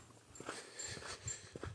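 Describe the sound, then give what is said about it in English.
Dogs shuffle and move about, being called in as a vehicle goes by, with soft scuffling footsteps and faint panting over a quiet background; no one speaks. “Dogs, come here! Hey!”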